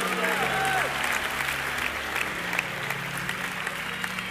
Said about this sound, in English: Come on, can we just clap loud our hands?